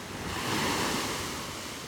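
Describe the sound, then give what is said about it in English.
Sea waves wash onto a beach in a steady, broad roar, swelling slightly then easing back, with a soft rush of wind over the surf and no voices. “And that's it. The last wave has come in and they're gone.”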